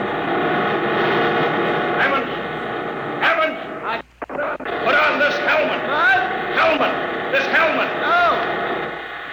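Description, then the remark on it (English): A loud, continuous mechanical rumble and roar from the huge rotors that drive a moving road, steady throughout with a brief dip midway, overlaid by scattered higher whines and chirps. “Yeah, the big ones are rotors. They drive the road.”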